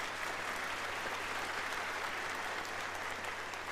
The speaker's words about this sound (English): Your wife might not clap for you, but everybody else will. How about that?